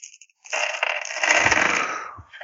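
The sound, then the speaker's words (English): Dice rattle and clatter as they are pulled out, a dense, scratchy, noisy burst of clicking lasting about two seconds, with a few sharper knocks and no talking. “No, that was me getting my dice out.”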